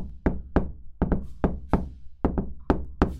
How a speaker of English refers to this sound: All right, here we are. And let's just give a little knock-a-roo.